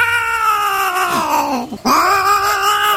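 A cat meows loudly, two long drawn-out yowling cries separated by a brief pause, with no other sounds around them.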